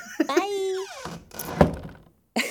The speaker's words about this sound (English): Okay, I'm going to close my little door now.